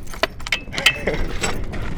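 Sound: keys jangling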